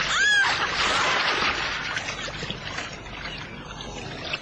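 A heavy splash as a woman is dragged overboard from a rowboat into the water by a creature's tentacles, loud at first, then settling into several seconds of churning, sloshing water with no one speaking.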